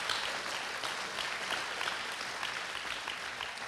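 A church audience applauds steadily to welcome a pastor, a dense wash of many hands clapping at once that holds a fairly even level throughout, with no one speaking over it.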